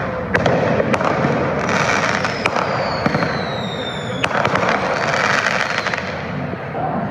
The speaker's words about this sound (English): The energy in the air was as apparent as the smell of gunpowder. People were setting off fireworks, mostly mortars, at random in and around the crowd.